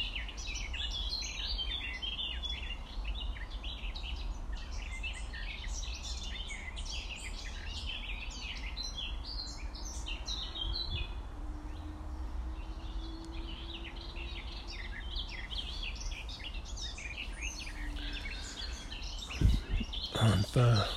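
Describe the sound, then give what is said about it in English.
Busy birdsong fills the air by a lake, many small birds chirping and trilling continuously over a soft outdoor hum, with a brief low rumble near the end. “Listening to the bird song.”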